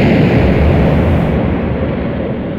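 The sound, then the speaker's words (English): A heavy, roaring blast of an incendiary bomb dropped by the Luftwaffe during an air raid sustains as a dense, deep rumble for a few seconds, crackling throughout and fading only slightly, with no voices. “They must be dropping incendiaries.”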